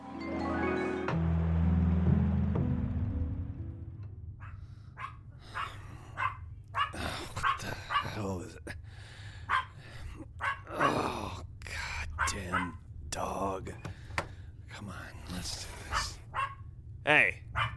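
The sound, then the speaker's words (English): A dog barks over and over in sharp, irregular bursts, loud, following a short tonal musical sting at the start. “Stop barking.”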